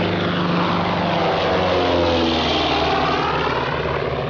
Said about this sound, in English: The plane to Lisbon.